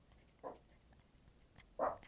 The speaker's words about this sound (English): But I do know my dog Emma doesn't believe so because she's in the background barking every time I say the word Joe Mazzulla. She's not a fan